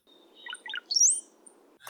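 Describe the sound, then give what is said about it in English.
A cowbird gives a short burst of liquid, gurgling notes that rise into a thin, high whistle, like water dripping from a faucet, heard clearly over a low steady hum. “It doesn't sound like a bird song, really. No, it sounds like, you know, the faucet dripping water or something like that.”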